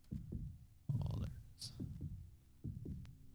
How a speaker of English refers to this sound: Hear the heartbeat, John. I do. I get it. They went totally literal.